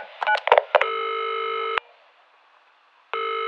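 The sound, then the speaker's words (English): A quick flurry of telephone keypad beeps gives way to a steady electronic phone tone that holds for about a second, falls silent, then returns, like a call ringing through, as a phone call is placed to a mother. No one speaks. “I just came to the US to live and to study here, and this is a phone call with my mom talking about my travel.”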